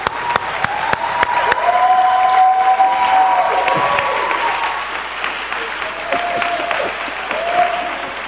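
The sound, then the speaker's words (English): A crowd at City Church applauds steadily for several seconds as a pastor is welcomed to the stage for his 5 years of service, a dense wash of clapping with a few cheers and whoops rising above it, sustained at a fairly loud level before easing slightly. “Let's give him a great big hand.”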